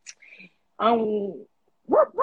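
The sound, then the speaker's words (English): A person imitates a dog barking, a short vocal yip followed by a longer harmonic bark-like howl and two quick, sharp bark sounds, fairly loud. “I'm on this little leash, but I'm running around here doing whatever I want to do. I'm barking loud.”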